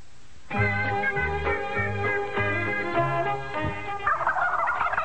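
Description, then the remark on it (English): A live turkey, sent by Bill, who raises turkeys, gobbles loudly, a long run of rapid, warbling bursts lasting several seconds, trailing off into a softer rustling noise at the end. No one speaks. “All right, I didn't know Bill would send a live turkey.”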